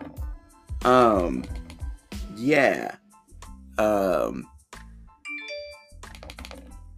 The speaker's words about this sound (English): As you can see, my notifications are going off. I've chosen for this iPhone to have my sounds on instead of the last version where my phone was on silent half the time.